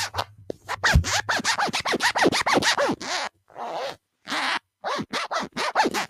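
Zippers being zipped back and forth in quick, rasping bursts, a rapid run of short strokes, then a pause and a few longer pulls followed by more fast zips, fairly loud with no talking.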